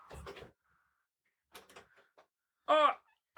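door being opened

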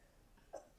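sneeze

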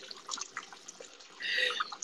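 urine stream splashing

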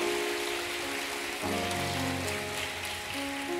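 audience clapping

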